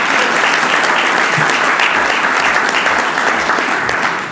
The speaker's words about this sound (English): We are live podcasting this, so let's have a round of applause for the live audience.